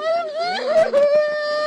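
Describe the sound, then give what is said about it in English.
A mother in hysterics over her choking 3-week-old baby girl wails in distress, one long, loud, high-pitched cry that wavers and briefly breaks into sobbing gasps midway before holding steady again. “What follows is pure drama as mom wails.”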